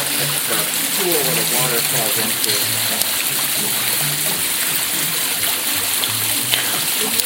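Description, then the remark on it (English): Water pours and splashes steadily down a tall, custom-built water feature about 10 feet high, a loud, continuous rushing roar, with a voice talking faintly underneath. “I'm touching the water right in here.”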